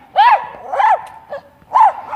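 A dog barks three times in loud, ringing bursts with a short pause before the last, plus a softer yelp in between; nobody speaks.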